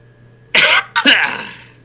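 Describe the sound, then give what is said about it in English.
Two harsh bursts from a person with a cold: a sharp cough followed by a longer, raspy throat clearing that trails off, loud against a quiet background with no talking. “Remember I told you I had a cold?”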